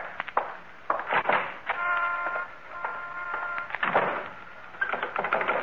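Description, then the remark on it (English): The front door is pushed shut, followed by a series of sharp mechanical clicks and rattles as its lock is worked, with a brief creaking tone in between. “I'll lock up.”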